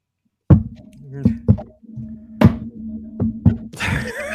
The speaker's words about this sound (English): Is that Morse code? Guess so.